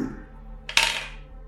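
A d20 die, rolled for a stealth check, lands with a sharp clack on a hard tabletop, then rattles and settles in a brief decaying clatter. No one speaks.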